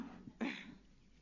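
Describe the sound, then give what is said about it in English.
A single short throat clearing by a person with allergies, a rough, breathy burst that rises abruptly and fades within a fraction of a second, not loud, with no talking around it. “Just forgive me for right now if I tend to clear my throat.”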